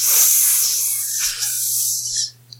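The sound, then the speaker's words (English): A voice imitates a water snake speaking, saying hello with a long, breathy hiss lasting about two seconds, loud, sputtering and wet like spraying water, ending with a short click. “Only water snake.”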